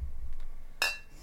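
A single bright clink of glass or metal tableware, sharp and close, ringing briefly before fading over a low, quiet room hum.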